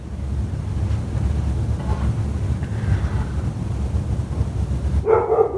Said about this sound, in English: Dog is barking.